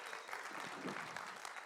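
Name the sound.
audience clapping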